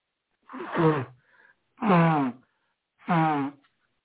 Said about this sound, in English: Let me blow my nose first.